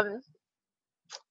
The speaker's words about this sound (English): Let me clear my throat.